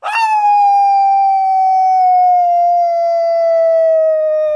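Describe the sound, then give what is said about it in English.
A person imitates a werewolf howl: one long, sustained tonal wail that starts sharply, holds steady and slowly drifts downward in pitch, loud, with no other sounds. “Would you like me to do a werewolf-like howl?”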